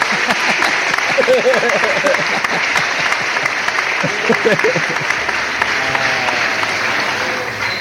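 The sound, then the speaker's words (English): An applause sound effect: a dense, steady wash of clapping from a large crowd, loud and sustained for several seconds, with faint cheering voices mixed in beneath it. “I wish I had my fucking applause. Oh, I do. I have it right here.”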